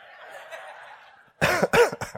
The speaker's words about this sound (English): Excuse me. I'm probably gonna cough, so I apologize.